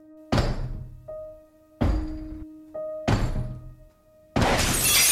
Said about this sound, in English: picks up a chair and starts slamming it on the locked bathroom door window glass to break it.